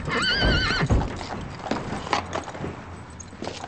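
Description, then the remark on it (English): A horse lets out a loud, wavering whinny, followed by a scatter of hooves clip-clopping and shuffling as the animal, a horse brought as a gift in Beverly Hills, moves about. “You bought me a horse.”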